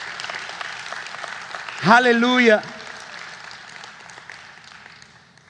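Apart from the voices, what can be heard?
audience clapping hands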